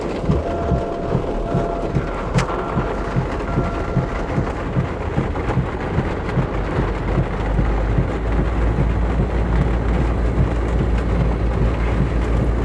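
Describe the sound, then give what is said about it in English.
Heavy rain drums steadily on a car roof, heard from inside as a dense, continuous wash with a low rumble underneath and no talking. “It's fucking hot in here and I'm not about to fucking heat to death because of some stupid fucking rain.”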